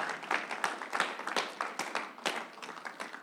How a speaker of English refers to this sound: Let's give the word of God a hand clap of praise this morning.